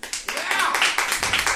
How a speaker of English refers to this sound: Clap your hands if you have been to the show before. Make some noise if you've been to Personally Speaking before.